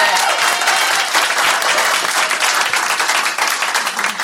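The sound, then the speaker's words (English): A crowd applauds the event's sponsors, many hands clapping at once in a dense, bright wash of sound that holds a constant loudness for a few seconds without letting up. “Let's clap for all our sponsors.”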